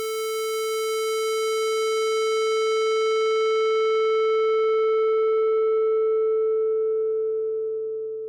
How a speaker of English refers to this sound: So what happens if we add a low-pass filter to our square wave and gradually decrease the frequency? Why, of course, we gradually remove all the overtones until we end up with nothing more than a sine wave that's 440 Hz.